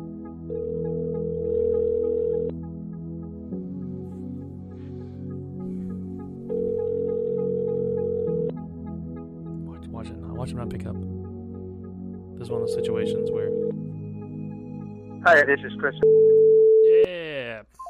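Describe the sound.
A phone ringback tone from a call to a friend sounds three times, each a steady mid-pitched buzz lasting about two seconds, spaced roughly six seconds apart over a low background hum, with brief voices and a rising chirp near the end.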